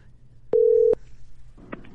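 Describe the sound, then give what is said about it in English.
An outgoing phone call going unanswered, on its way to voicemail: a single short, steady, loud electronic tone framed by clicks, then low line hiss and a faint muffled sound; nobody picks up or speaks. “He's not going to answer. I'll leave him a mail, a voicemail.”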